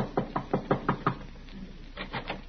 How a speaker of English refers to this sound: As we rejoin Riley now, he is tapping a bit nervously at the door of Miss Jessup's apartment.